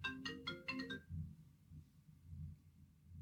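A short electronic call ringtone from a laptop's incoming call plays a quick melody of several bright notes for about a second, then cuts off, leaving a low, muffled rumble in the background.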